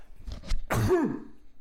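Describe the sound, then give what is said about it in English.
A single harsh, forceful sneeze, preceded by a couple of short breathy inhales and trailing into a strained, groaning vocal tail. “That was a rough sneeze. It was a painful sneeze.”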